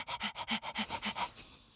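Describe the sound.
A voice imitates a small house cat huffing and panting in labor at home, as it sounded for about a day: about nine quick, breathy huffs in a steady rhythm, fairly loud, fading out at the end.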